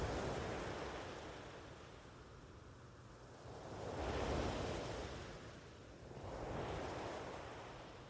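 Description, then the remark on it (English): Ocean waves wash onto the shore in a steady rhythm, two broad surges swelling and receding over a continuous hiss of surf, with a light breeze and no voices. “Enjoy the sounds that the waves make as they wash into the shoreline.”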